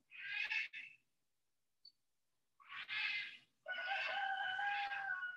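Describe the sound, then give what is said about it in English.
Loud, harsh calls from wild parrots in three bursts, the last one long and sustained, with short silences between them; there is no talking. “let's celebrate that there are wild parrots in the world.”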